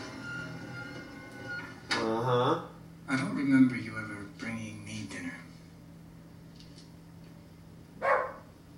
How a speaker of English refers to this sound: Sorry, folks. My wife puts the animals outside during my podcast so they can bark during the show.